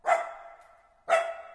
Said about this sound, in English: He was barking his head off to remind them not to forget him.